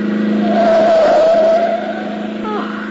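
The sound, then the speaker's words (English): A car roars past at high speed on the wrong side of the street, its engine whine climbing loud before dropping away as it speeds off. “That car coming. Boy, is he traveling.”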